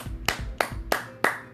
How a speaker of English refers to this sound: Clap it up again.